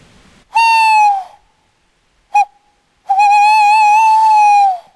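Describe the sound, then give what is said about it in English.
A person imitates an owl by hooting through cupped hands: a long, hollow hoot, a brief short note, then a drawn-out quavering hoot, loud with no talking. “I'm going to hoot through my hands and see if that'll draw them in a bit closer.”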